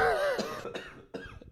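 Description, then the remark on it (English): A wet, phlegmy cough: a strained vocal groan breaking into a few rough, chesty hacks in quick succession, with no talking. “I heard the moisture. I heard the moist cough.”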